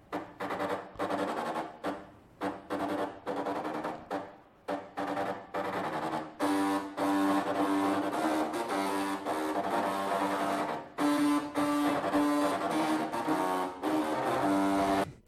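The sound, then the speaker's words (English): Floppy disk drive heads, programmed to seek to certain points, buzz out a tune: short staccato notes in a choppy rhythm, then sustained, steady buzzing tones with a harsh mechanical edge, loud throughout and with no voices. “And the speed at which it seeks and then the speed at which it stops is what controls the sound waves that comes out of it.”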